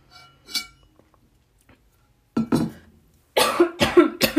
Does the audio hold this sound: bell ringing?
no